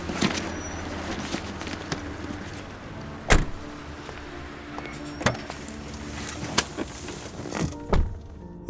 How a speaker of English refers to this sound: Once outside, the men hailed a cab. Hey, can you open up the trunk? Thanks!